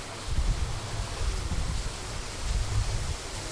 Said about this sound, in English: This is the water coming down through the canyon that we're walking through leading into the show.